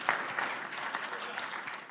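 A steady round of audience applause, dense and continuous clapping from many hands at a moderate level, with no voices standing out over it.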